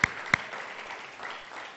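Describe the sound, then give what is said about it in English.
A church audience at a Mother's Day service claps their hands for the Lord: two sharp, loud claps ring out at the start, then settle into a steady, fairly soft wash of many hands clapping together, with no voices. “Can you give the Lord a hand clap today, because he's an awesome God?”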